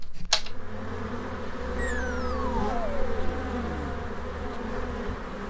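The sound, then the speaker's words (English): A dense, steady drone of many bees buzzing, with a single louder bee sweeping past and dropping in pitch as it flies off, over a low constant hum. “Looks like the bees are not happy.”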